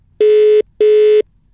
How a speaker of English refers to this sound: Let's give him a shout and just see if we can get through to him. Oh, it's ringing. Fantastic. Brilliant.